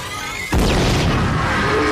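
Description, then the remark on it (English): Fireworks thrown at a monster go off with a sudden loud boom about halfway through, followed by a sustained, dense roar of crackling and bursting that stays loud to the end. “The Wheelermobile gang is back with Lucas's fireworks.”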